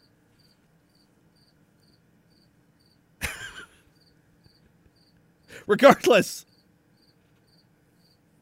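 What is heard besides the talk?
cricket chirping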